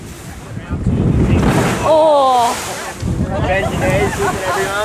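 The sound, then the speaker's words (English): Heavy wind buffets the microphone over a steady rushing wash of ocean water at a boat's bow in a small 1.5-metre swell, loud and constant, while a voice exclaims and talks briefly above it. “I'm told it's a small swell today, only 1.5 metres, so I head out to the bow of the boat.”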